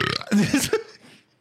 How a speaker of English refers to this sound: Surprise, dude. I needed that burp.